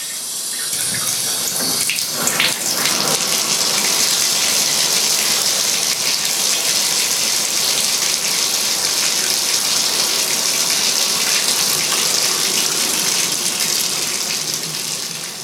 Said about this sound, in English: For me, that escape has been bubble baths. I find the sound of running water and bubbles fizzing to be really peaceful.